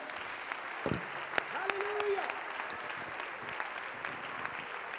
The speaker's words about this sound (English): If you're thankful for what Jesus is doing in this house, clap your hands to him one more time in this place and give Jesus praise.